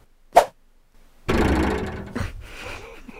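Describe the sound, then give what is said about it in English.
An arrow-strike sound effect: a quick sharp snap, a brief pause, then a loud, heavy thunk with a rumbling, ringing tail that slowly fades. No one speaks. “They'll say, hey, you know what you need? You need an arrow.”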